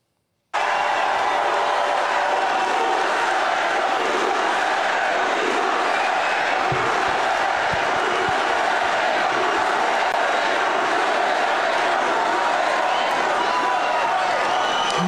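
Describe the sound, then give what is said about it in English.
A packed rally crowd of thousands in Michigan cheers and roars nonstop for the president, a dense, loud wall of voices that swells in after a brief silence and holds steady for about fifteen seconds. “The crowd was packed into the center that they had the rally at, and really responsive to the president,”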